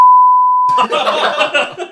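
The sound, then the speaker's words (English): A single steady, high-pitched censor bleep sounds for under a second, loud and flat, then cuts straight into someone talking. “Yeah, Robin, I'll probably beep that.”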